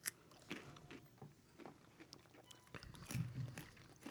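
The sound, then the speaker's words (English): Crunchy chewing of walnut dark chocolate into a microphone, several irregular bites and grinding chews of something hard and brittle, loud with no talking. “Try not to crunch into the mic here.”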